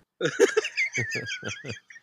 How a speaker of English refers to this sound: There's birds.